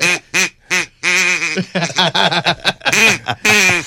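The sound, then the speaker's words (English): A duck call is blown in a rapid series of quacks that rise and tumble like laughter, loud, with short choppy bursts and no talking. “Can you make it sound like he's laughing?”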